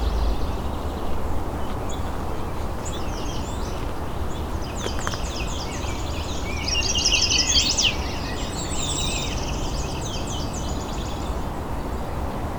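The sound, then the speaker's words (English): A chestnut-sided warbler sings several bright, high phrases in succession, one louder burst in the middle, against a steady rushing background noise that never lets up. “I think that was yellow warbler, could have been chestnut sided. Actually, yeah, it's chestnut sided.”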